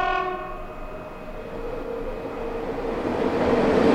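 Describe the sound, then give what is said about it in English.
A train horn blares with stacked harmonic tones that fade as the rumble of rolling rail cars builds louder, a steady mechanical roar with no voices. “That's the hype train that I've heard for the last, like, 20-something years on this movie.”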